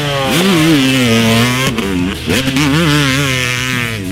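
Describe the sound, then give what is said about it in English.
A dirt bike engine revs loudly, its whining pitch surging and dropping several times in quick succession with no pause, and no voices are heard. “Yeah, so let's move into the events part of the podcast, and I'm going to kick things off with some dirt action.”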